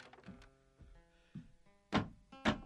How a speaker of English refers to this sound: I removed the planks that covered my door.